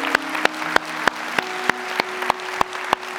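An audience applauding in celebration after a prayer: a continuous wash of clapping with sharp, loud claps landing in a steady rhythm, roughly three per second, over a low sustained hum. No one speaks.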